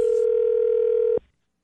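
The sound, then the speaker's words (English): A telephone call rings on the line: one steady, loud electronic ring tone, holding for just over a second before cutting off abruptly into silence. It is a Jubal phone tap prank call from Pook to the parent of a middle schooler, on the radio station Moving 92.5. “So why is Pook calling the parent of a middle schooler?”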